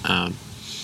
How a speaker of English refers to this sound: My wife's in there. Shrieking you hear is my daughter.